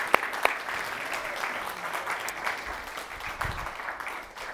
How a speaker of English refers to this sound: And so I wanna invite those that are on the board to come on up here. And yeah, sure, clap for them.